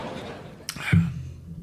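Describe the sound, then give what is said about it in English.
A single bright, short clink of glasses of Breckenridge Brewery beer touching in a toast, followed by a low muffled thump and some quiet background murmur. “Raise a glass. Good stuff today. Cheers.”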